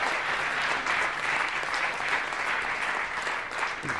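A church crowd applauds steadily to thank someone for a graphic shown up on screen, a dense wash of many hands clapping at an even, sustained level for the full few seconds without a break or any voices on top.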